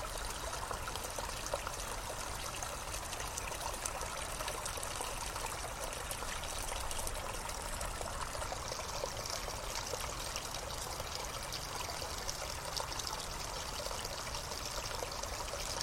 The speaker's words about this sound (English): On a cold day like this, all alone in the wilderness, so very tranquil to be somewhere that's so devoid of summer feel and colours. It still feels so rich and full of life. The sound of the water and the birds.